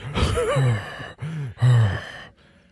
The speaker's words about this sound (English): I'm going to try to get all my breathing out before we actually start going.